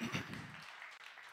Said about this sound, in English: Come on, give him a round of applause.